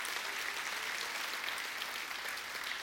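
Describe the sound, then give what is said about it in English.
A church audience claps steadily for about three seconds, a dense, even wash of many hands with no pauses or talking over it. “I think we should clap our hands.”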